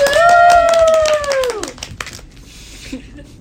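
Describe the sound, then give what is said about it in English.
A small group claps briefly for guest stars while a loud, drawn-out cheer rings over the top. The whoop falls away and the clapping fades out within about two seconds. “Can we get a round of applause for them, everybody?”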